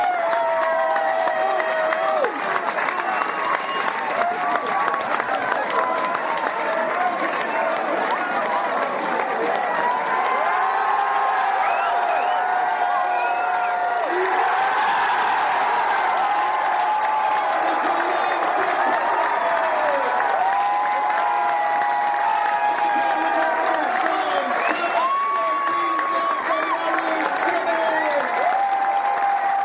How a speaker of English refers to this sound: God bless the crowd and God bless the sports ground, because let's face it, what an atmosphere. I mean, it just makes such a huge difference.